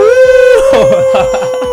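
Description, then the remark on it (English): A loud, drawn-out howl in a song, held on one steady pitch and continuous, with busier musical sounds joining underneath after the first half second. “Oh, that's a that's a howl if I ever heard one.”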